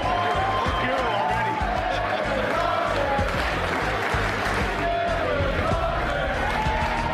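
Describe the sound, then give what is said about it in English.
A large crowd at the 2005 NFL Draft cheers and claps steadily throughout as the Green Bay Packers select quarterback Aaron Rodgers of California with the 24th pick, a dense, loud roar of applause and shouting with voices blended into the wash of noise. “Oh, he won a lot of people in this crowd. They've been rooting for him all day.”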